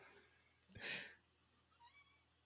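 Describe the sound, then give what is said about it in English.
A cat gives a short, fairly quiet meow, wanting to be let out, followed a moment later by a fainter, thinner cry, with no talking around it. “The cat wants to get out.”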